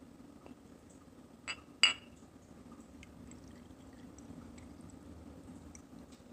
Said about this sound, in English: I think I'm going to be finishing some of the last of this wild turkey rye. This was re-oaked. Did re-oak this. So let's get a nice, nice visual and a nice sound here, this pour.